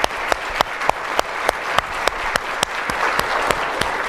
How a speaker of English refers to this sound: I think we now actually do need to turn to the panel, and I know you're gonna have to go vote in a moment, but I just really wanna thank you, and can we please, please give Congressman Gallagher some applause?